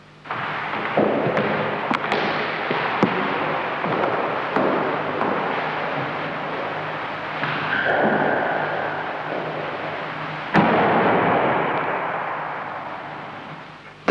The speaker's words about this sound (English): Was the sound of the locked door flying open and slamming shut, which she recorded from inside the squash court. She said that this happened 3 times, despite the fact that the catch was down.